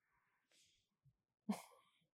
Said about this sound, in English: Our dog's having nightmares. Yeah, he's like, burp, burp, burp, burp. Oh no. Okay. Yeah, he's having nightmares.